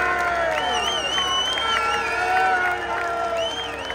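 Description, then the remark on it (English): A large crowd of fans cheers and shouts continuously at a trophy celebration with Welsh flags flying, as Ollie Palmer and Ben Tozer stir up the crowd to lift the trophy; a dense roar of voices with whoops and high-pitched yells rising over it, loud and sustained throughout. “And Ben Tozer are stirring up the crowd to lift the trophy.”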